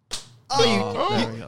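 A single sharp, fleshy slap of a hand against a belly lands close up, followed right away by a loud voiced vocal reaction that carries through the rest of the moment.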